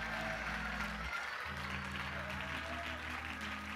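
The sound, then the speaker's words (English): A church audience claps their hands unto the Lord, steadily for several seconds, a dense, continuous wash of many hands, with low sustained musical tones humming underneath that drop out briefly partway through. “Why don't you clap your hands unto the Lord and just tell him, I'm thankful, Lord, to be a part of the church of the living God.”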